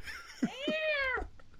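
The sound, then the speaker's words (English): A single drawn-out cat meow, rising then sliding down in pitch, clear, preceded by a couple of brief low thuds. No one speaks. “Damn cats. Shit on my floor.”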